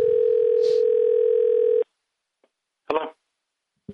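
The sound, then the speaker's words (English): A steady, loud telephone dial tone hums for nearly two seconds as a phone call is placed, then cuts off abruptly; after a short silence, a brief burst of a voice answers faintly on the line. “He does not know we're calling, so let's call him.”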